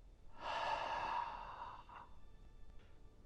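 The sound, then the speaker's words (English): A slow, deliberate exhale, breathy, swelling over about a second before tapering off into soft background noise with a faint trailing breath. “My breathing was normal now.”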